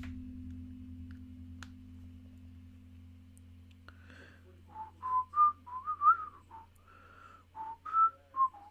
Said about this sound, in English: I'll whistle it. There you go.